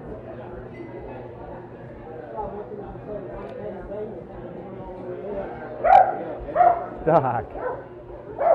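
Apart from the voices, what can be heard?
big dog barking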